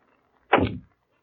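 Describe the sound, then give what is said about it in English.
A bedroom door opening in one quick, loud burst: a brief scraping swish that slides downward into a low thump, with quiet on either side and no talking. “That's the bedroom door.”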